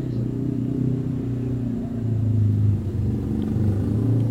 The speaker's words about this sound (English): That is a loud motorcycle, I'm sorry.